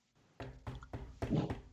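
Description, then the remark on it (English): Five solid knocks on the wooden door of a sheriff's office building in a steady, even rhythm, each a dull, resonant thud, moderately loud, with no voices. “You decide to knock on the door, I assume.”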